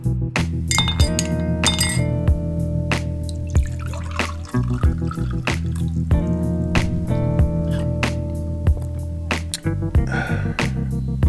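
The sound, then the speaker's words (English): Glasses clink together in a toast, a series of bright clinks at irregular intervals over a sustained ringing tone, with faint liquid sounds and no talking. “I'm Galen Bingham, and this is Whiskey, Jazz, and Leadership Podcast. Cheers.”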